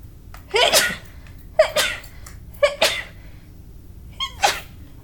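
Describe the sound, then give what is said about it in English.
Four sharp sneezes in a row, fairly loud, each a quick breathy burst separated by pauses of about a second, with no talking in between. “I have to sneeze.”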